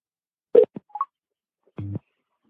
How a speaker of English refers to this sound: Just to confirm, you'd like to call WWV. Work? Yes. Calling WWV. Work. Phone call. WWV.